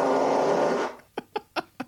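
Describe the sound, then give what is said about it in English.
A loud, raspy fart blasts for nearly a second, then four short, sputtering toots follow in quick succession, with no one talking. “So … had a business where she was selling her farts in a jar.”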